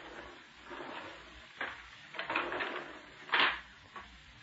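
Garage doors rumble and rattle as they are pulled shut, with a few scraping clatters building to a solid bang near the end, with no voices.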